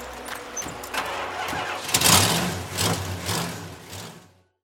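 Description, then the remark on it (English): Ricky's pickup truck engine cranks with a quick whirring starter, then catches and revs up loudly before settling into a rough, throaty idle, with no talking. “Totally missed the sound of Ricky's pickup truck starting up.”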